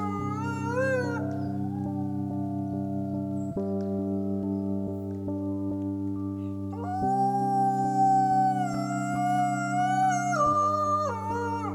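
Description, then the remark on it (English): Several wolves howl together in a sustained, layered chorus, long steady tones overlapping with higher wavering voices that rise and swell near the end, loud with no talking. “You can feel the vibrations, not probably in the wild because they're far away, but if a Leoa is howling right in front of you, you feel it in your body.”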